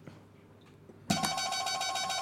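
quiz buzzer

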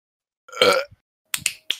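burp

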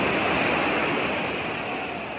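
ocean waves and wind

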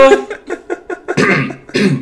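coughing

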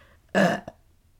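burp

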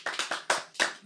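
round of applause

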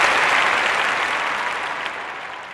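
round of applause

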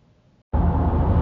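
car interior

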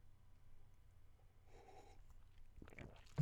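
sipping hot coffee

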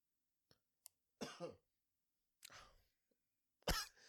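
cough

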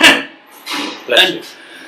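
sneeze

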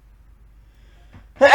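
sneeze

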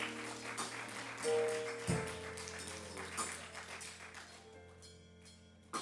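audience hand clapping

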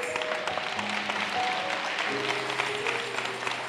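audience hand clapping

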